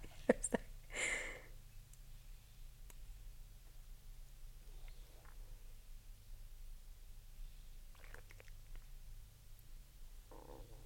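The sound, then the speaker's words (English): Slow, deep breathing as someone takes big deep breaths with eyes closed and hands on a deck of cards, with a strong airy breath near the start and softer hissing inhales or exhales every few seconds over a steady low hum. No one speaks. “You're going to hear me doing heavy breathing.”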